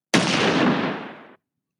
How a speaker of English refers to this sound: But a minute later, one of the SWAT members swarmed around the machine, reported hearing a single gunshot from inside the sealed cab.